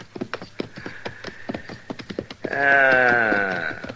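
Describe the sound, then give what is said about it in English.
A steady clatter of hooves plods along for a couple of seconds, then a loud horse whinny rings out, its quavering pitch sliding downward before fading; two horses, not range horses, in cottonwoods by water. “Oh, there's water, all right. Yeah, horses. Two of them.”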